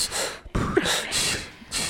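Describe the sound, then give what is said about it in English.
Heavy, rhythmic breaths huff in and out, used as a music beat: several forceful gasps in quick succession that form a steady, beat-like pulse, with no talking. “You having breathing compilations over there?”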